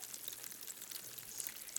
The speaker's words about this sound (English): Mix the water, vinegar, dishwashing liquid, and food coloring in a pitcher. Number 4, ready for the eruption? Pour the vinegar mixture into the can and watch the lava flow.